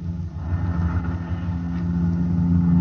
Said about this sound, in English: This is … speaking to you from a helicopter over Kansas City.